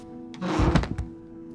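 A chair breaks and someone tumbles to the floor: a quick jumble of heavy wooden thuds and cracks over half a second, then a couple of fading knocks, with no talking.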